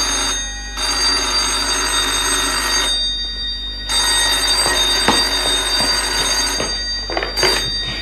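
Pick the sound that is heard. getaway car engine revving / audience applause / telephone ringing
telephone ringing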